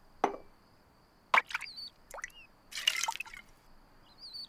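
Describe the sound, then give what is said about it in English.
A toy drinking bird in a scene from The Simpsons dips its beak into a glass of water, making a few small, quiet drips and plops spaced irregularly over a few seconds, with no voices. “It's drinking the water!”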